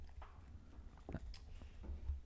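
sipping water

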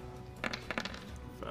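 dice being rolled

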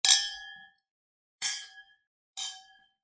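wine glasses clinking

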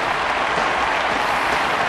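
thunderous applause

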